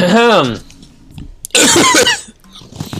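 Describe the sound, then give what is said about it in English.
A brief voiced hum comes first. After a pause, a person gives a loud, raspy throat clearing lasting under a second, followed by quiet background noise. “That was me clearing my throat to start the podcast.”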